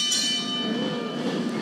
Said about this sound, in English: Ring the bell.